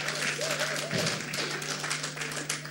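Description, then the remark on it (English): Steady applause from a crowd, a dense wash of many hands clapping at once for a few seconds, with faint voices mixed underneath. “You can clap to that.”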